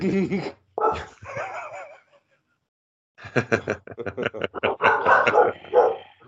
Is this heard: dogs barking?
yes